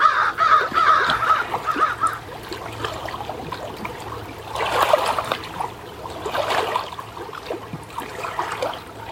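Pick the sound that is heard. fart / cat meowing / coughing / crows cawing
crows cawing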